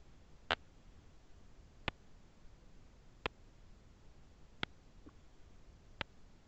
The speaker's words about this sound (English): And for those of you that are on the phone right now, just figuring that out, if you are not hearing a steady tick like a clock, then that means that your phone is the one that is not on mute.